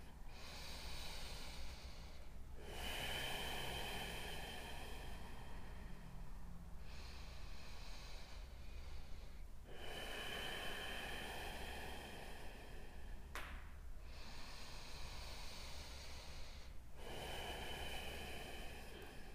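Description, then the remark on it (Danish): Slow, deep breaths drawn in and released in long, steady cycles during a yoga pose with hands and feet on the floor, about three full breaths, fairly loud with a soft airy hiss and no talking. “Vi tager tre åndedræt her.”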